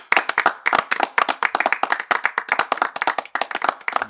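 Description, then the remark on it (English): A small group of hands clapping steadily in a brief round of applause, dense overlapping claps sustained for several seconds with no talking. “A little round of applause for whoever's listening right now.”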